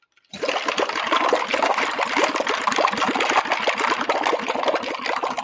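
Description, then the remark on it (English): A loud, sustained wet lip buzz, a mouth fart, bubbling and sputtering in rapid pulses for about five seconds, with no talking. “That's a mouth fart. It's like we're under the ocean.”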